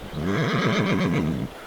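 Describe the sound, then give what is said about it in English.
A horse whinnies loudly, a single quavering neigh lasting over a second with a rapid warbling wobble before it cuts off. “You can ride on the back of my horse, Professor.”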